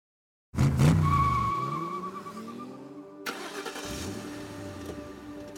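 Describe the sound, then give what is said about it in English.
A car roars to life and its tires squeal hard as it burns rubber, loud, with the engine revving and a second screeching burst partway through. “with eBay Motors, you're burning rubber, not cash.”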